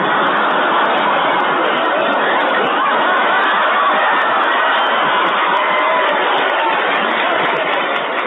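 A large crowd cheers and applauds a governor in a loud, steady roar of clapping and shouting that holds at full level for the whole stretch without a break.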